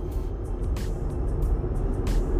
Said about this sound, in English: It's because the traffic is getting a little bit better.